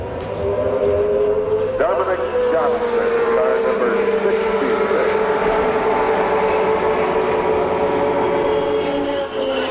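Indy race cars roar past on the track at the 1993 Indianapolis 500, their high engine whine rising and falling in pitch as several machines sweep by in a continuous, loud drone.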